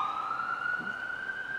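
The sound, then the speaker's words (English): A steady emergency vehicle siren wails outside at moderate volume, its tone sustained and slowly rising with faint harmonics, with no one speaking. “I'm going to have to maybe say that again, so for the siren.”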